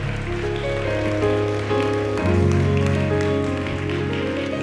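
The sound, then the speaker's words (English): A church audience claps steadily and densely for several seconds to thank God for a bishop, a continuous patter of many hands, with sustained musical chords ringing underneath that shift pitch partway through. “Would you clap your hands and thank God for Bishop Flynn John?”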